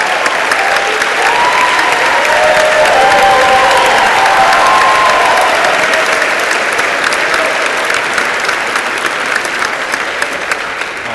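A large audience applauds steadily for about eleven seconds, a dense wash of clapping with scattered cheers and whoops rising above it, loud throughout and easing slightly toward the end.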